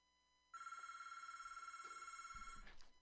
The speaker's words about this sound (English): Okay, pardon me, we got a phone call.